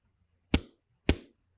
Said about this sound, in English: I have to hit on my computer. Tell me if you can hear it.